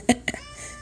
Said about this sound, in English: ignore my cat. or listen to my cat. She makes this audio more exciting.